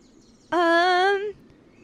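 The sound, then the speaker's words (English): A single loud, drawn-out seagull cry, steady and nasal, lasting under a second before cutting off, from a bunch of seagulls and a hawk heading toward the speakers, against a quiet background with no talking. “Behind, there's a bunch of seagulls and a hawk.”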